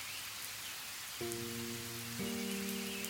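Steady, soft rain hisses throughout, with no voices, while low sustained musical tones fade in partway through and shift to a new chord near the end.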